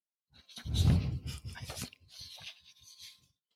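A dog pants in quick, rhythmic huffs of breath, a stronger burst at first and then lighter, steady puffs trailing off, with no talking.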